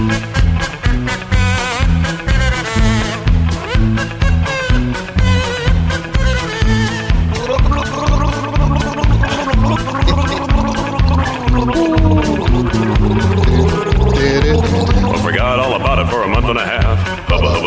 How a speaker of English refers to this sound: Kazoo.